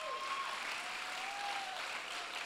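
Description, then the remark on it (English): An audience claps steadily during a sermon, a dense, continuous wash of many hands with no pauses for its whole length, while a faint high whistle-like tone drifts beneath the noise. “He is getting you ready so that when they are out, come on, I wish you'd clap tonight.”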